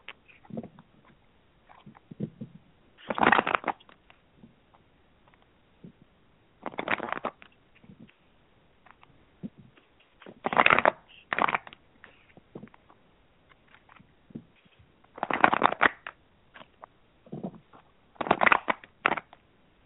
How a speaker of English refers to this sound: One moment. I'm going to shuffle a different deck. Because as I was laying out the spread, Spirit told me to use a different deck. So just one moment.